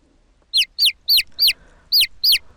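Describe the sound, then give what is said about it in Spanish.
Six high, thin chick peeps in a quick, fairly even series, each a short downward-sweeping chirp, clear against a quiet background with no talking. “¡Sí, son pollitos!”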